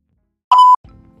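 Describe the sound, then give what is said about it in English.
A phone gives one short, bright electronic ring tone for an incoming call, a clear steady ding lasting a quarter second, followed by a faint low muffled rumble. “And I was interrupted by a phone call.”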